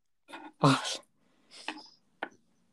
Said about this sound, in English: Sneezes are horrible. Yeah, they are. Sneezing's not very nice.